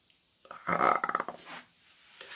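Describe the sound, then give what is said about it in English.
A person blurts out a wet, sputtering fart noise with their mouth, imitating the sound Gak slime putty made when squeezed: one rough, buzzy burst trailing off into a softer breathy hiss. “Fart.”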